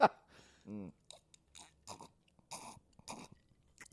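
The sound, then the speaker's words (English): Someone sips whiskey right against the microphone: a sharp knock, a short hummed tone, then a series of close, wet slurps and lip smacks spaced irregularly. “You think people like it if I sip this whiskey right on mic like that?”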